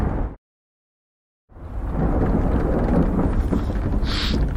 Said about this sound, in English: This storm is really bad.